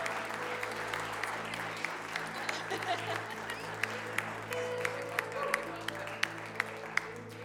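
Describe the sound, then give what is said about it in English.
A church audience gives a round of applause to honor the pastors' wives, a dense patter of many hands with a few sharper individual claps standing out, moderately loud and continuous with a low hum underneath. “So if you could stand up and help give them a round of applause, let them know how much they're appreciated.”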